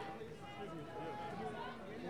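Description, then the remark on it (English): A dense, steady wash of crowd chatter and commotion from a gathering on a courthouse lawn, mostly Black clergy, many in suits or clerical collars, with many overlapping voices blending into a continuous babble at an even, moderate loudness and no single voice standing out. “It's an overwhelming sea of commotion.”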